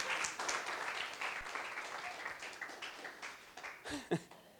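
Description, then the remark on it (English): An audience claps for God in a dense, steady burst of applause that keeps up for several seconds at moderate loudness, with a few raised voices near the end. “Come on, let's give God a clap.”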